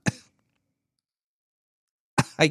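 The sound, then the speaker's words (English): A person coughs from having something in their throat: a single harsh cough, then about two seconds of silence, then two quick coughs in a row, as if clearing the throat. Fairly loud, with no talking. “I'm just a little coughing fit. Got a little something in my throat.”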